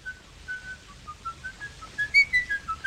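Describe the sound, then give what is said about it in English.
A man in a film whistles a melodic tune out of nervous habit, the notes stepping and sliding through a simple phrase, growing a little louder and brighter toward the end. No one speaks over it. “He has a nervous habit of whistling, and he whistles.”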